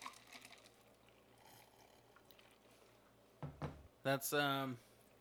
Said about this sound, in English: I'm gonna take a couple more sips.